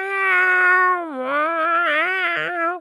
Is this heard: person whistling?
no